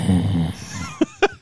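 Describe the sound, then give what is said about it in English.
A voice mimics heavy breathing: a low, rasping, snore-like exhale, then three short, sharp huffs in quick succession, with no other talking. “Heavy breathing.”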